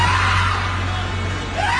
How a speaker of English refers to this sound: and we will scream one out, whatever you give us, and we'll shout it together.